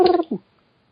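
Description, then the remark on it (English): A person briefly imitates a pigeon's coo: a throaty, buzzing voiced note followed by a shorter, lower warble, then silence. “You have to do some kind of like pigeon noise now.”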